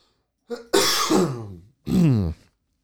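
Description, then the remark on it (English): A person coughs and clears their throat: a short catch, then a long raspy, strained cough, a brief pause, and one more harsh burst. Loud, with no talking. “I'm gonna have to cough again.”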